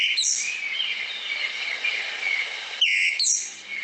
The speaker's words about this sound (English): But as to its call, I'm going to just see if I can find it for you fairly quickly. That's a ground scraper thrush, and this is the actual call of that one, if I can get it.